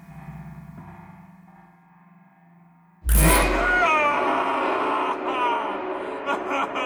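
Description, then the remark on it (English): A voice imitates a father yelling in his sleep during night terrors: a low, quiet moaning murmur, then a sudden loud, strained scream that bursts in and holds, wavering, for several seconds. “And he'd be yelling in his sleep.”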